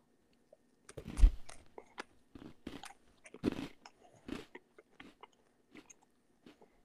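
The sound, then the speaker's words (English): Crisp crunching as someone bites into food and chews, a series of sharp irregular crackles with short pauses between bites, no talking. “1 second of crunch, and then I'll back off.”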